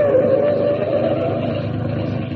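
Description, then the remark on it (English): A car engine drones steadily as the vehicle drives along, a continuous, fairly loud rumble with a slight whine that eases a little over the few seconds, with no voices. “See that big truck moving up the road? That Miss Lane's car?”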